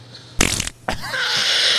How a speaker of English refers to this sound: 10 hours of farts